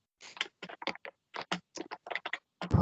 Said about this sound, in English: Who's on their typewriter again?